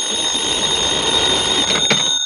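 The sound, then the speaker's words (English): A telephone bell rings steadily, a bright, shrill metallic trill that holds loud and unbroken for a couple of seconds with no voices over it. “Your number's ringing now, Mr. Dollar.”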